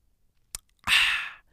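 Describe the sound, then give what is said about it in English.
A quiet sip of water: a small mouth click, then a brief breathy slurp and exhale lasting about half a second, with no talking. “Now, let me take a sip of water before we actually continue.”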